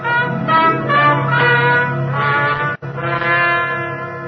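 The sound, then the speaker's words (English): An apartment doorbell rings loudly late at night with a sustained, buzzy, harmonic-rich tone, sounding as two long rings separated by a brief gap, with no voices. “Then late one night, as I was getting ready for bed, the bells of my apartment rang.”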